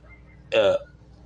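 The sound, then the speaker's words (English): A single short, loud sneeze bursts out, sharp and voiced, lasting about a quarter second before fading into quiet. “Bless you.”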